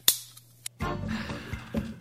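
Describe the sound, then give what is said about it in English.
A can of Pub Beer cracks open with a sharp metallic snap and a couple of small clicks, then a loud, steady fizzing hiss runs for over a second. No voices. “It's my favorite time of the podcast when I get to cracky old pub beer.”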